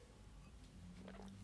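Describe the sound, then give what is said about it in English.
A quiet gulp of water, with a soft swallowing sound and a brief wet burst near the end against a low background hum. No one speaks. “You gulp of water.”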